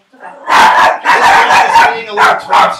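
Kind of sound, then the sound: animal, dogs barking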